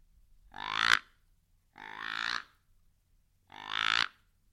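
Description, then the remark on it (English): A hickory wood grunt call with no rubber parts on the outside, shaped like a duck call, is blown three times in even, evenly spaced blasts, each a loud, raspy, croaking honk lasting under a second, with brief quiet gaps between and no talking. “It's just a piece of hickory wood. Yeah. It looks kind of like a duck call.”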